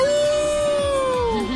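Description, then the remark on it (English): A single loud, sustained howl, the cry of Omen the Houndoom sent out in a Pokémon battle, holds one steady, slightly wavering pitch for over a second before sliding downward at the end, with no talking over it. “Howl at that moon.”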